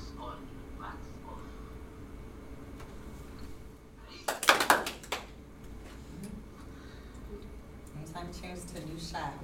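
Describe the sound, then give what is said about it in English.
A brief, ragged burst of hand claps from a group of students, four or five sharp slaps in about a second, rising out of a low background murmur and fading quickly. The students clap at each shot change, marking the cuts while watching a movie scene. “And what I want you to do when we're watching this, anytime you see a new shot come on the screen or a shot change, that's where a cut happens, and I want you to clap.”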